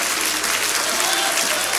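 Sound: audience clapping hands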